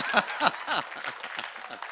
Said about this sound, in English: I deserve a clap just for being able to do that.